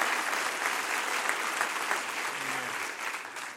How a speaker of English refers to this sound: Clap your hands before you're seated to the Lord one more time.